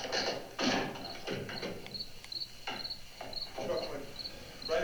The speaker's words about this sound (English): The crickets are chirping.